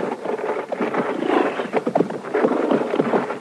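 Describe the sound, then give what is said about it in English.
Horse hooves pound steadily in a dense, rumbling gallop, loud, with an irregular drumming rhythm and a windy, noisy background, as riders mount up and ride off. No one speaks. “All right, get on that horse, Doc.”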